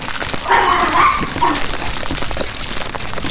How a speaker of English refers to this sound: That's a lot of puppies.